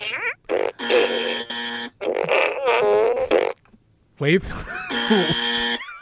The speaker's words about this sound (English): wins that one because the farts don't lie.